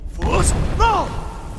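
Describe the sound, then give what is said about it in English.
A booming video game shout, the Unrelenting Force shout used to strike targets as they appear, bursts out with heavy reverb, a deep bellowing voice layered over a rumbling whoosh that echoes and fades away. “Use your unrelenting force shout to strike the targets as they appear.”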